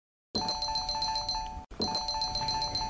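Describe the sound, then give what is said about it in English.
A new telephone rings in an apartment with a rapid, trilling electronic tone, sounding in two bursts separated by a brief break. The ring is loud and steady, with no voices. “In this episode, Maud and Bessie are watching their new color TV in their apartment when the phone rings and Maud has surprise visitors.”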